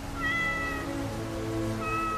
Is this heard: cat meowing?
yes